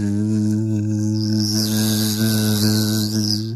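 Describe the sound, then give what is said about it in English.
A voice imitates the humming buzz of a hive of bees swarming a pagoda bush in a backyard: a steady, droning hum held for several seconds, with a gently wavering, slightly nasal tone and no words. “Well, yes, because you normally don't have a humming bush.”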